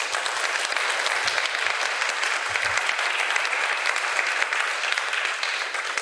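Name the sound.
audience applause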